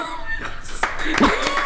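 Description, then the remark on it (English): A brief, sparse round of clapping: a handful of sharp, uneven hand claps over under two seconds, with a voice murmuring beneath them. “And I'm actually prepared this week, so I would like an applaud.”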